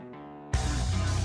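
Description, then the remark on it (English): A sustained, slightly detuned keyboard synth chord plays softly, then a loud, bass-heavy synth swell cuts in halfway and holds thick, wavering tones to the end. No voices. “I like keyboards that are like slightly detuned like that.”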